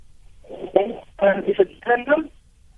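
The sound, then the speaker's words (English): A voice over a cell phone call sounds thin and muffled, arriving in three short choppy bursts with gaps between them, as if the call keeps breaking up. “we seem to have lost you a little bit on your cell phone. Can you just move? Because you're just cutting out a bit.”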